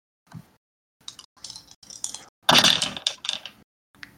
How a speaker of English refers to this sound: Actually, you know, roll to provoke. This is a game with rules. Dice rolls.